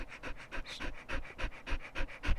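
small dog panting

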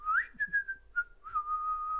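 person whistling

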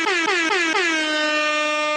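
air horn sound effect

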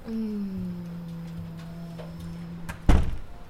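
door closing

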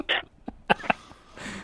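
sneeze

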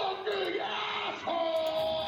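man screaming

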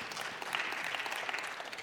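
a few people clapping

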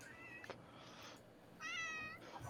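cat meowing

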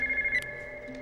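phone ringing

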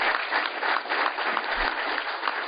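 audience clapping

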